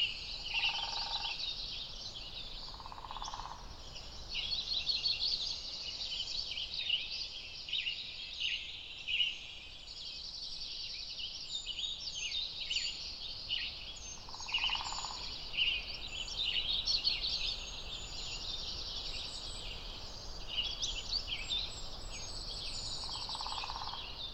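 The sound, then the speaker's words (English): Distant dark-eyed junco trills rise from below amid a steady wash of high birdsong, the rapid trilling phrases soft and far off, with occasional lower calls and no voices. “You can still hear the trills of the juncos down below, but they're so much quieter up here.”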